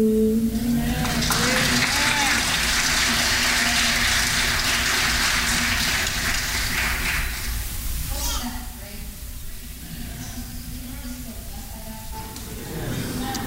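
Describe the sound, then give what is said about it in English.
A crowd applauds loudly with dense, steady clapping for about eight seconds, then the clapping thins and fades while voices and a few cheers carry on underneath. “Can we just get one more round of applause just for that?”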